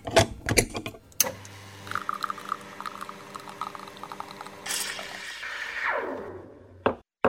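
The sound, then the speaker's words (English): A warmed-up espresso machine brews a shot: a few sharp clicks, then a steady, droning pump hum, followed by a loud burst of hissing that tapers off, and a final click or two. No one speaks. “Now, I can see that the espresso machine is warmed up and ready to go, which means it's time to brew up another leadership espresso shot.”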